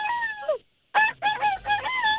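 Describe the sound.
A caller imitates a rooster crowing as an impression, a strained, wavering vocal call in two bursts separated by a brief silence, fairly loud with no other talk.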